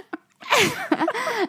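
A single fairly loud sneeze: a brief sharp intake of breath, then an explosive burst that trails off into a drawn-out voiced exhale.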